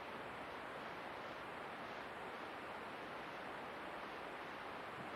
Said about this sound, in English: Now, can you listen to that rain? Please listen quietly. Can you listen to that rain without thinking about the rain?